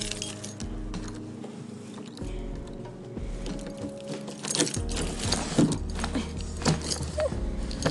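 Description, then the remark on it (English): Keys jangle and clink in a flurry of bright metallic rattles during the second half, over a steady low background hum, as keys are taken out of a pocket to unlock and open the front door of a house. “Let me just fish my keys out of my pocket. I'm just opening the door.”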